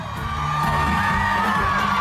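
A woman screams on a sustained high pitch over a loud crowd cheering and shouting, the noise dense and continuous throughout without any break.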